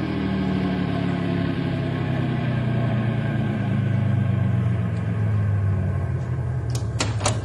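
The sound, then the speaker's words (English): A car engine rumbles steadily and loudly, its low drone gradually dropping in pitch as the car slows to a stop, with a couple of sharp clicks near the end. “stop the car gently and everybody out.”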